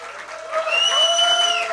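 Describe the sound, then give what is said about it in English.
A short burst of steady applause, with a sustained high whooping tone ringing over the clapping for most of its length. “Okay, now do applause.”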